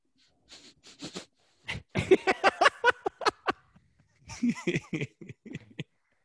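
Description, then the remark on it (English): A person loudly imitates a dog sniffing, with quick bursts of sharp, rapid sniffs coming in three clusters, the middle run the fastest and most intense. “just going to be walking around like a dog, sniffing everybody, just getting up in their face.”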